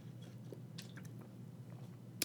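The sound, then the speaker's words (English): Quiet wet mouth sounds of someone sipping water: a few soft slurps and swallows over a low steady hum, ending with a small sharp click. No one speaks. “That's just the agua again. Not be dry.”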